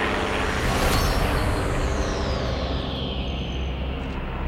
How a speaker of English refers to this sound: Guys, into the trees. A plane's coming. Get out of sight.